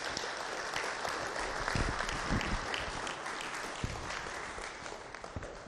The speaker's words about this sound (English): Y'all need to give him a round of applause because he's following the Lord's steps. And y'all helped him do it, so y'all need to give yourselves a round of applause.